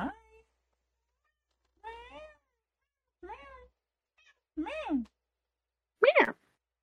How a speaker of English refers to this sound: Oh, it's the cat.